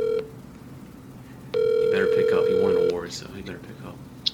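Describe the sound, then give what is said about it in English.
Ringback tone of an outgoing phone call placed on a show to congratulate an award winner: a brief clipped burst, then a longer steady electronic tone lasting over a second, loud above quieter voices talking underneath and continuing afterward. “Let's call him on this show.”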